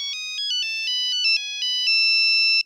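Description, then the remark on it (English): A classic cell phone ringtone plays a quick, chirpy electronic melody of stepped synthetic tones, steady and fairly loud, before cutting off abruptly after a few seconds. “That was before I had a cell phone, and that thing would be going off on people's pockets, and I would be like, oh, that is so annoying.”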